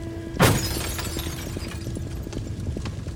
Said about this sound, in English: You know, we mashed the window out, broke all the glass out, and one of those guys pulled this guy out of his car.